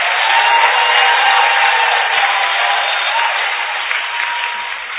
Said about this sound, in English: Clap out loud, praise God.